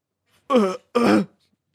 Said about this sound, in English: I burped.